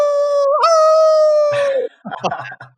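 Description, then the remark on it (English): A person imitates a wolf howl with one loud, sustained note that wavers in pitch for under two seconds, then breaks off into brief, choppy vocal sounds like laughter. “I've done my wolf impression. Give us your one.”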